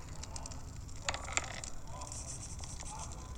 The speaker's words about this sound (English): I've just opened the app and you can hear the fireside ambience.